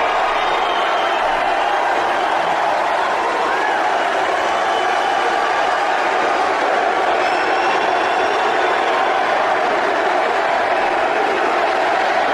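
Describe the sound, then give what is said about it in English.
A large crowd at a Donald Trump rally in Erie cheers and roars as he walks out on stage, without pause for about twelve seconds, a dense, steady wall of loud voices with occasional higher whoops rising above the din. “Hear that crowd.”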